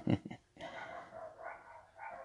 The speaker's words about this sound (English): Well, it looks like some dogs are going crazy out there.